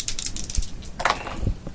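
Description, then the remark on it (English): A quick rattle of two dice tumbling and clattering, a run of sharp clicks and taps as they roll across a hard surface for a charisma plus leadership roll in a tabletop role-playing game, with no talking. “So two dice.”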